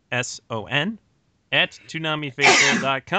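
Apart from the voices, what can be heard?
sneeze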